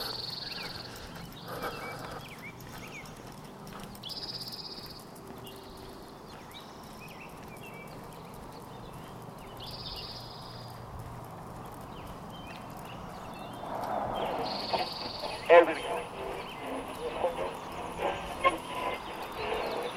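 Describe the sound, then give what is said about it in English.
Several birds chirp and sing in short, repeated bursts over a steady outdoor background hum, in the morning on 185th Street. The calls are fairly soft and grow busier and louder toward the end. “Little chorus there from the bird brethren.”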